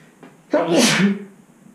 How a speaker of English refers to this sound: I've got one quote to share with you before we kind of move on here, but I'm going to sneeze, and I always leave...